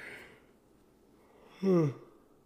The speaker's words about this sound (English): I was trying to keep a yawn out of this episode, and that obviously didn't work.